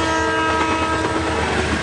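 A loud, sustained train horn blares over the heavy rumble of a passing train, steady and unbroken for the short stretch, with no voices.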